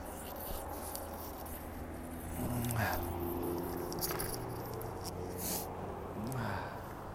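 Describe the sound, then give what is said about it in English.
Light rain begins falling in Los Angeles, a steady soft hiss with scattered patters of drops throughout, and a couple of brief low tonal murmurs in the background. No one speaks. “Rain is starting to come down.”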